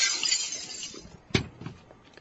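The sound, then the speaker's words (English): Glass covering diamonds shatters under a heavy blow from a chair, a bright crash of breaking glass followed by a sharp impact and a few scattered tinkling shards falling afterward. “This chair ought to do it.”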